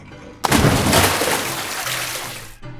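A sudden loud splash into river water, followed by about two seconds of steady rushing, churning water noise that cuts off abruptly. No voices are heard.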